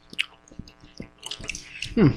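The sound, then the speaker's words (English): Wet chewing of candy: a series of soft smacks and clicks at an irregular pace, ending with a brief burst of voice. “This one doesn't seem as crunchy, though.”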